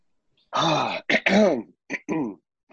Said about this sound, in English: I'm going to clear my throat here for this one.